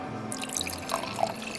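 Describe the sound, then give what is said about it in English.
Wine pours into a yass glass in a short, steady trickle, with a few bright gurgles and splashy blips rising over the flow. No one speaks. “Come forward and fill your yass glass.”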